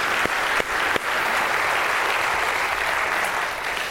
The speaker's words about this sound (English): Can we give God a round of applause one more time?